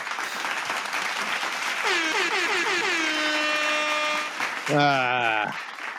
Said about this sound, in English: Give me a clap.